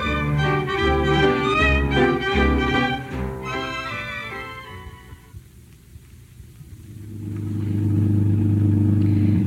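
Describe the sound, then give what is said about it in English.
A car engine revs loudly with a strained, whining drone for several seconds, dips away, then settles into a steady low rumble that swells as the car drives off. No one speaks. “It took me a few days, but I finally got you in my car.”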